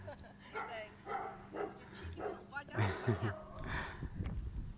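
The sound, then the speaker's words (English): A small Jack Russell terrier that got out barks in short, quick bursts, with a few yips clustered together, as it is taken back to its owners, while a person's voice is heard indistinctly in the background. “Isn't it funny when you see a dog that gets out and he's like, he's having a ball, just running around everywhere, tail wagging at many miles an hour, one of those little Jack Russells, and they've come looking for him.”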